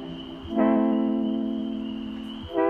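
A song plays, dominated by one long, steady note held for about two seconds at fairly strong volume, with a thin high tone sustained in the background throughout.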